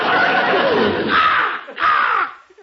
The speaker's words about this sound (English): Hey, what's that? That? Oh, that's Arnold, our talking crow. A talking crow, huh? Let's hear him say something.